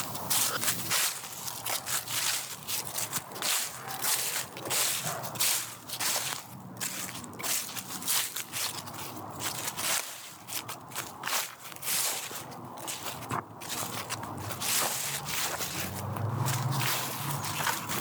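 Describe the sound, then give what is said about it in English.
Steady footsteps crunch and crackle through dry, brittle dead leaves, twigs and decaying vegetation in a wood, each step a crisp rustling burst in an uneven walking rhythm, with no voices present. “The ground crunches underneath every step I take, reminding me I may be the first carving this path through decaying vegetation.”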